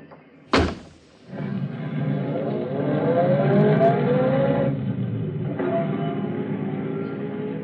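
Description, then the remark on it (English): A car door slams shut, then an engine starts and revs into a steady, rising drone as the car pulls away and drives on, fairly loud with no talking. “But that's my car.”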